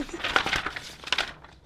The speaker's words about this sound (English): Let me move my paper.